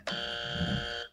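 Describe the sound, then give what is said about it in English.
A single loud, harsh electronic buzz sounds for about a second at a steady pitch, then cuts off. It's a bought game show buzzer being pressed during a game, with no voices over it. “we even have buzzers. I bought these.”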